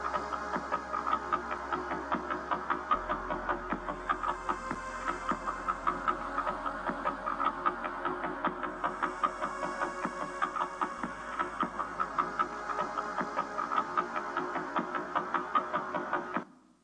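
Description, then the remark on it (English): A sonified recording of three stars joined together: a steady, dense electronic drone shimmering with rapid rhythmic pulses and layered tones, holding an even loudness for about sixteen seconds before cutting off abruptly. “And first he joined the stars together, and the two stars sound like this.”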